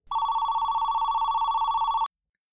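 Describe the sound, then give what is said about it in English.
A telephone rings with an incoming call at Air and Waves, Flights and Travel, a single continuous electronic trill, a rapid warbling high-pitched tone that holds steady for about two seconds and then cuts off abruptly into silence. “I have to get rid of them. I can't take any more calls.”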